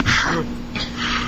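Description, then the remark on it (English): Two harsh, breathy coughs from someone who is a little sick follow one another with a short pause between them. They sound raspy and strained, close to choking, and no one speaks over them. “And, as always, I'm coughing, which is... Choking.”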